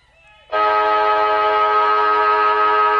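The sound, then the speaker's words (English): A loud, sustained three-quarter time siren blares suddenly and holds steady at one pitch for about two and a half seconds across an open football ground at Windy Hill, after a brief quieter moment, as a shanked kick bounces. “I was going to say why it was interesting was it was a shank kick that bounced when the siren went.”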